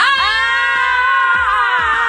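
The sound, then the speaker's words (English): People scream loudly and continuously into microphones, a shrill, sustained wail that holds for about two seconds without a break, with no talking. “Let's scream into the mics.”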